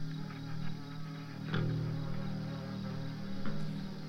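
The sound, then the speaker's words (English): A steady, low-key wash of crickets chirping, a sound effect, continuous and fairly quiet, with a few faint clicks scattered through. No one speaks over it. “Oh, here's the crickets I was talking about.”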